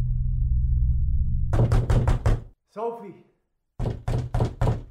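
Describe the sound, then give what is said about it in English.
Firm, rapid, loud knocks on a door in two bursts of about four or five raps each, with a short voice calling out in the pause between them over a low hum. “Because Johnny's at the door.”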